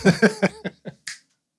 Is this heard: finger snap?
yes